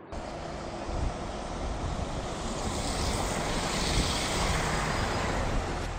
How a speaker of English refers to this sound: But there is no parking at the trailhead, so we are here at the Vail Transportation Center waiting for a bus to take us out to the gorgeous trail. I hope you'll stick with us.